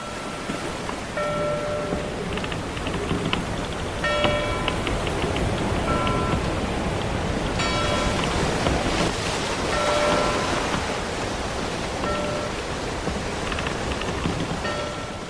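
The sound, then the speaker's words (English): A ship's bell, said to mean the Argosy has sailed into port bringing mail from overseas, rings out in irregular clear, ringing strikes over a steady, loud wash of harbor waves and surf, with no voices. “We have returned, and that bell means that the Argosy has sailed into port, bringing us mail from overseas.”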